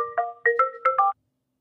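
A short electronic phone chime as a phone call connects: six quick, bright tonal beeps grouped in pairs, clear, lasting about a second before silence. No voices.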